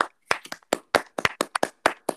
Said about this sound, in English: Let's clap for him.